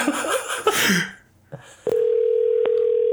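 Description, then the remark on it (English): A phone number is dialed for a prank call: a brief rough, breathy noise gives way to a click, then a steady, mid-pitched telephone tone hums on without a break, interrupted once by a sharp click. “Okay, I thought I dialed the same number.”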